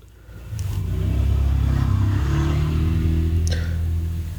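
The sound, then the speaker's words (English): A car passing in the background, its engine swelling in, rumbling low and steady as it passes by, with a rising whir that lingers before gently receding. “That was a car passing in the background.”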